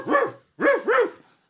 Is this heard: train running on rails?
no